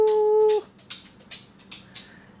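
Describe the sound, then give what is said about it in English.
A dog lets out a steady, high-pitched whine lasting about half a second, followed by several soft, breathy little bursts at irregular intervals, with no talking. “you're such a good dog.”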